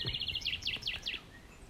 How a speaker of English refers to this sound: Inspired by Claire's poems about nesting birds, she reads Starlings Nesting, as she is herself surrounded by birdsong.